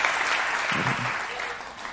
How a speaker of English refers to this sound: Would you give them a round of applause this evening? Amen.